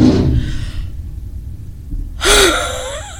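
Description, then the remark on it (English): A loud vehicle engine rumbles low and steady as the vehicle pulls up, with a rough burst at the start and a sharp, louder roar of revving near the end that slowly settles back down. “But no, that was just my dad pulling up in one of his many loud vehicles.”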